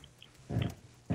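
A female dog going berserk barks twice in quick, gruff, loud bursts, with a short pause between them and no talking.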